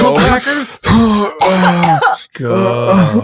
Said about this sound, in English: I coughed it out. That's fine. It's in your system.